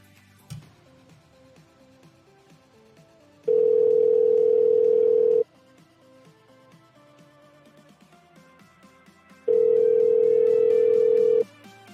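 A phone ringback tone sounds twice while a call is placed to order food, each a steady two-second electronic buzz separated by a long pause, fairly loud over quiet background music with no talking.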